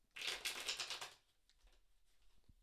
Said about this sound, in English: So just take a moment and you'll connect to the cards by listening into the sound of them being shuffled.